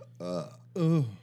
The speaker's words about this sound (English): Are you okay over there? Yeah, just a burp.